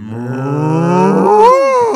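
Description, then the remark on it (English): A person imitates a cow's moo: one long, loud, low lowing call lasting about two seconds, rising in pitch toward the end, with no other talking. “I mean, yeah, because a cow sounds like.”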